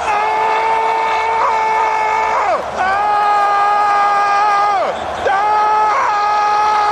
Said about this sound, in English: Just like screaming right now. You got to keep it warm, you know what I mean? Screaming to stay warm.